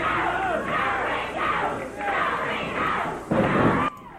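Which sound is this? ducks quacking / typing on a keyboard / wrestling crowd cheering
wrestling crowd cheering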